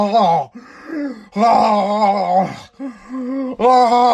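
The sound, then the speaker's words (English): A voice imitates the heavy, labored breathing of a person eating ice cream: a series of loud, drawn-out groaning exhalations, about four in a row separated by brief pauses. “Fucking dude, anybody who's eating ice cream is breathing heavy because they're dying of a heart attack.”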